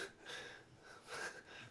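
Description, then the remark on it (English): Several soft, breathy coughs come in rough, uneven bursts with a raspy, wheezing edge, each one followed by a short intake of breath. No one speaks. “Coughing. Face the other way.”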